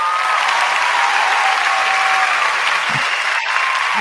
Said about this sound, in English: I'm going to give you some applause.